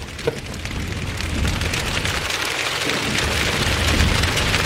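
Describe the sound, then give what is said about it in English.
A steady, dense patter imitating rainfall, made by many people with their hands and bodies, fills the whole stretch at a fairly loud, even level with a slight swell toward the end. “Like rain.”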